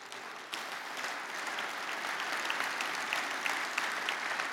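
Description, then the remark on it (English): A crowd applauds steadily for several seconds, many hands clapping in a dense, sustained wash that swells slightly after the first half-second and holds at a moderate level, with no voices on top. “Oh, you can clap, but I didn't believe him.”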